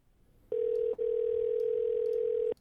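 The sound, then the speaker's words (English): A steady, loud electronic phone tone holds for about two seconds with a brief break near the start, like a call ringing through on the line. No one speaks. “He seems like the kind of guy that would answer a random phone number.”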